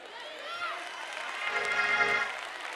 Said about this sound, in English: Come on, clap a little more for that.